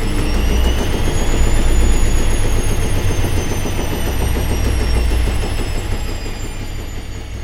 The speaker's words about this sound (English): You can go to one of the washing machine spins.